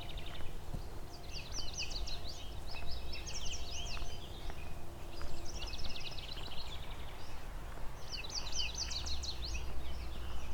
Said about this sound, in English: Oh, there's a warbling vireo here too. And a house wren.